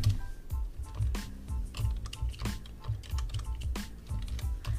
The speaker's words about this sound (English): And I'm typing away.